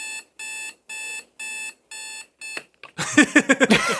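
An alarm clock rings with five evenly spaced, bright electronic beeps, loud, then cuts off into a short burst of louder, noisy clatter.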